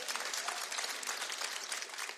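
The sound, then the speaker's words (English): An audience claps in agreement, a dense, even patter of many hands sustained throughout without pause, fairly loud with no voices standing out. “Clap if you agree, man.”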